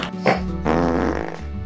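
A loud, drawn-out fart sound effect with a buzzy, rumbling tone, lasting nearly two seconds and heard on its own.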